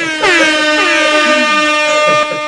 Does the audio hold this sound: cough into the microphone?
no